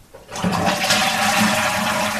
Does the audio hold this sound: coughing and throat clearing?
no